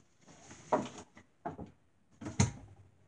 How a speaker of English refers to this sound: Just need to clear off some of the stuff on this desk with some papers. Away. Just gonna put these in this drawer.